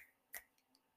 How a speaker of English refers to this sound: Finger snaps, everyone, if you can hear them, to do my poetry.